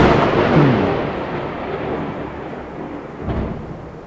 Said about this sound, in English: Is that thunder somewhere?